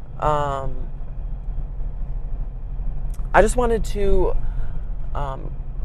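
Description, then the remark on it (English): Steady low rumble of a car's interior during a short drive to work, a constant engine and road drone running underneath a man's clear speech throughout. “But I'm on my way to work, and I just felt like I wanted to talk about the Holy Spirit on this short car ride.”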